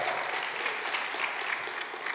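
An audience at a church service applauding steadily, giving a strong hand to the Lord, a dense, continuous clatter of many hands clapping at an even level, with no voices breaking through.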